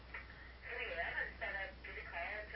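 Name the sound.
telephone ringing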